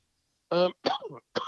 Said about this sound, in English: excuse me, I got a bit of a cough.